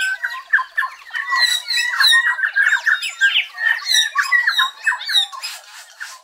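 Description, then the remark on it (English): A dense dawn chorus of many New Zealand bellbirds (korimako) singing together, with bright, ringing notes and chattering calls overlapping continuously at high pitch, steady and fairly loud throughout with no talking. “It all builds to a brilliant, ringing dawn chorus.”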